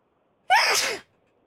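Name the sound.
sneeze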